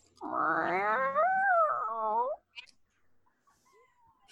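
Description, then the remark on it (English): A person does a long, drawn-out meow impression, a single wavering cat-like wail lasting about two seconds, fairly loud, followed by a brief click and quiet. “and this is my meow.”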